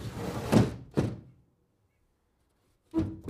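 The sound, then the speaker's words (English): Heavy thumping knocks as two boys thump on the walls and knock against the window of a house: two dull blows, a silent pause of about a second and a half, then another cluster of thuds. There is no talking. “As the man slowly made his way back to his daughter's room, the two boys thumped on the walls. The man clutched his daughter to his chest as the boys incessantly knocked against the window.”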